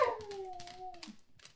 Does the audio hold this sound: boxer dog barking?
yes